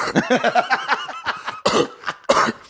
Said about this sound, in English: Dude, what would be freakier than a cat with a human cough?